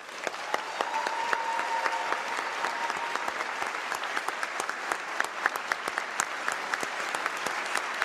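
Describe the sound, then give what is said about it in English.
Sustained applause from a large audience greeting the introduction of Governor J.B. Pritzker, a dense, steady patter of many hands clapping at once with no break, moderately loud and continuing for several seconds. “I guess that's the clapping sign.”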